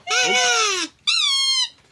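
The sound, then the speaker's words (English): Two drawn-out squeaks from a squeezed rubber ball toy, each nearly a second long with a slightly falling, reedy pitch, separated by a brief pause. Loud, with no talking. “And that was, for want of a better term, Swanee Kazoo. Featuring Squeaky Ball.”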